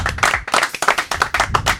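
A few people clapping their hands in a quick, uneven rhythm of sharp, bright claps that overlap into a short burst of applause, moderately loud, with no voices.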